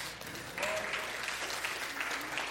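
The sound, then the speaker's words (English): A church audience claps steadily after hearing that Elder Jim Clark will preach next week on Father's Day, a dense rush of hand claps at an even, moderate loudness. A faint voice briefly rises above the applause. “Yeah, you can round of applause.”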